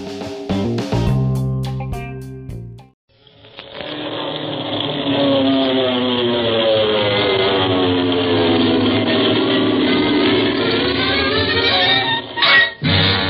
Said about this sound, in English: From out of the past comes a thundering roar of the twin Wasp 14-cylinder radial engines.